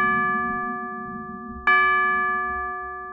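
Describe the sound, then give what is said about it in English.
Two resonant bell chimes ring out from a clock striking the late hour while a storm blows outside, the first at the start and a second, louder strike midway, each tone lingering and slowly fading over a low rumbling background. “The storm was picking up, and the clock let them know that the hour was late.”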